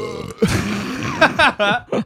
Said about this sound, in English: I got yelled at earlier for burping, just so yeah, we're but clear.